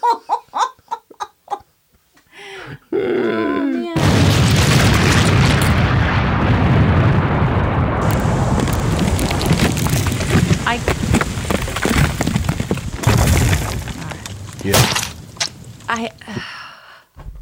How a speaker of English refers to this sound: I cannot fathom taking my child to go see an exploding animal.